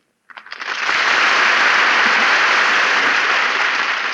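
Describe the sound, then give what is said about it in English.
Applause from an audience for Meredith Wilson, Jose Ferrer and Ray Middleton starts with a few scattered claps, then swells within a second into a loud, steady ovation that continues at full strength without any voices. “I heard the applause of the multitude and I came running out.”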